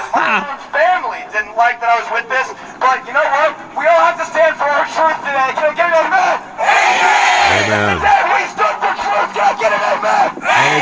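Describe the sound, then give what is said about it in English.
A crowd at a Birds Aren't Real rally in Springfield, Missouri, United States, chants and shouts in rhythmic bursts, loud and energetic, then erupts into a dense roar of cheering around the middle before the chanting voices pick back up. “Back over in the United States in Springfield, Missouri, we had the big rally for Birds Aren't Real.”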